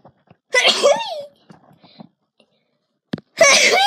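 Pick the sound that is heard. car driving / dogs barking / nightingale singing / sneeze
sneeze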